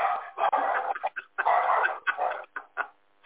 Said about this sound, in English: Watched him come up to the door, and I'm not answering it, but the dogs I knew were about to light him up.